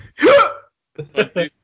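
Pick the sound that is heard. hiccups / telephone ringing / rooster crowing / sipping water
hiccups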